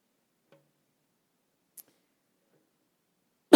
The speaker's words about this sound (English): I'm sorry. I didn't mean to cough in this.